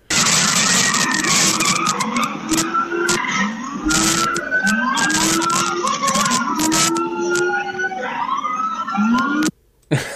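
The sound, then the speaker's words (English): Loud, continuous tire skidding and squealing as a stolen short yellow minibus sideswipes a car and shoves it sideways on all four tires, with rising and falling engine tones and a siren wailing in the background as about a dozen police follow; no one speaks. “He's sideswiping the vehicle and pushing it on all four tires sideways.”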